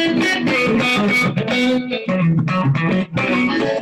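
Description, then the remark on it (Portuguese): A processed electric instrument tone plays a continuous, dense phrase with echoing delay, heavy compression and reverb tails, loud with no voices. “Esse é o som que, ó, um delayzinho, um compressor meio chapadão e um delayzinho, né, um reverbzinho.”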